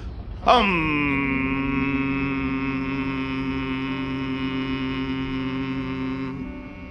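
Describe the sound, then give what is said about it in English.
Several voices hum together during a relaxation exercise in a steady, sustained drone that starts abruptly, holds evenly for about six seconds, then fades slightly near the end. It sounds fairly loud. “Don't stop that marvelous, soothing humming.”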